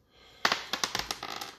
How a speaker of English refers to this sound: Roll the dice twice. What does the dice do?